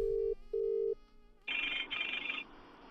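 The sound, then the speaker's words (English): An outgoing phone call rings: two steady, low ringback tones pulse back to back, then a sharper, higher-pitched double trill cuts in louder over a hissy line. “It's ringing.”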